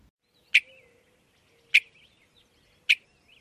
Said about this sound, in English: Western meadowlark.